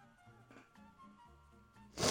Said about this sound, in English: Oh, that was awesome. Good that sniffle. That was good. That was strong.